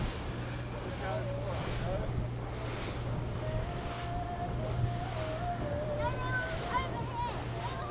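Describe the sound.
A boat's engine drones steadily under a constant wash of water and wind off the volcanic island of Lesbos, Greece, with indistinct voices of passengers murmuring throughout as they watch for dolphins and lean to one side of the boat.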